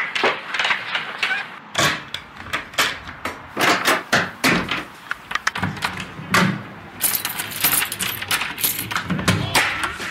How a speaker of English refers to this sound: I'm knocking on his door. I hope he's inside the house. He can hear me knocking on the door.